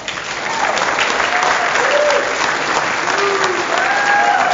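Steady audience applause at a comedy show in Lockhaven, a dense wash of many hands clapping at an even loudness throughout, with faint whoops and voices rising briefly above the clapping.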